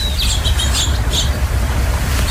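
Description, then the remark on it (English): Several small birds, including mourning doves, lark sparrows and house finches, chirp and tweet in quick, high bursts at backyard bird feeders at a home in San Diego, Southern California, over a steady low outdoor rumble with no one speaking. “an audio card about some pretty cool birds she's watching from a window at her home in Southern California”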